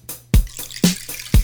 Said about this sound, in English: Water dripped a rhythm from her fingers to the float.